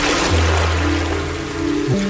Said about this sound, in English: I hear water.